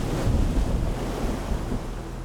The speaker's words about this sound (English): He looked up to see a mountain of water towering above. The mast groaned, and the wave crashed down and let the sea in.